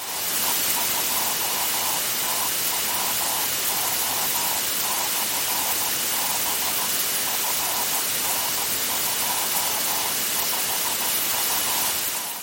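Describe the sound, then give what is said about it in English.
A raspy, buzzing radio signal of an aurora-distorted transmission, keyed on and off in quick Morse-like bursts at a mid pitch, riding over a constant loud hiss of static throughout. “but it makes it very broad buzz like aurora, which has the interesting effect that it actually makes it sound much louder, even though the peak signal level isn't significantly different.”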